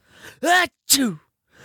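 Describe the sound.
A loud, voiced sneeze shouted out like "ah-choo" in two strong bursts, a rising intake followed by a sharp explosive cry, with faint breathy sounds around it.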